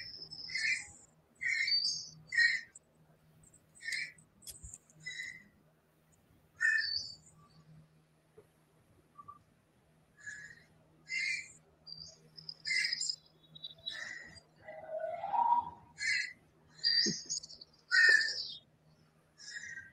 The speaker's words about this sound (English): You hear that whistling right there? Mm-hmm. Couldn't hear that before.